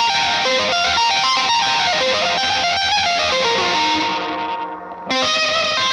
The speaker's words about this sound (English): Was just the distortion at the end of the chain, which I only use in … at the moment, but it's this I Was a Wolf in the Forest distortion, and so it gives me the ability to just make everything messy and fun.